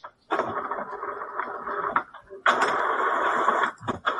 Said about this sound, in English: Excuse me, my friend, my printer is going off.